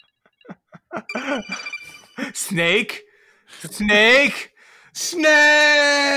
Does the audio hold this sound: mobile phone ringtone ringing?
yes